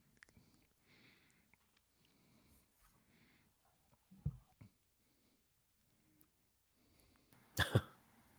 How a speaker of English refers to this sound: By the way, if you're watching on YouTube, I apologize that I'm having to blow my nose on camera. I'm still getting over the it COVID.